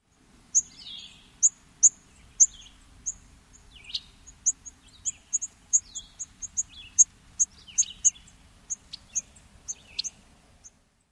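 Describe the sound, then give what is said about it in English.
A yellow-rumped warbler gives a long series of thin, high-pitched sip calls, short and sharp, repeating at an irregular quick pace against a quiet background. “Their high-pitched sip call.”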